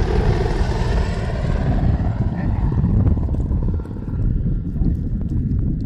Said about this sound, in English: Oftentimes, we have a helicopter passing us.